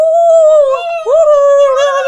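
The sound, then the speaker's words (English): A human voice imitates a Bigfoot call with a loud, sustained high-pitched wailing howl that breaks off briefly halfway through, then swoops back up and holds steady. “Oh, he does like the whistle thing and the rocks. No, and he does like the call.”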